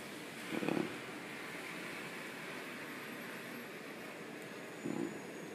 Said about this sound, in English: Another fire truck. Oh, trash truck. Never mind. I am incorrect.